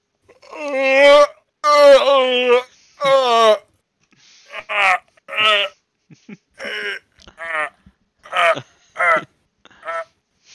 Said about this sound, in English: Okay, that's a good yawn. I'll get it out of the way.